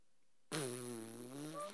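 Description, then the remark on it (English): A single loud fart breaks the silence at a Thanksgiving dinner and holds for just over a second, buzzy and steady-pitched with a slight waver before it cuts off. No one talks. “Yeah, it was my fart, and I said, ta-da!”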